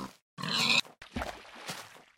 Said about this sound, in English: Wait, did I hear another pig? Yeah.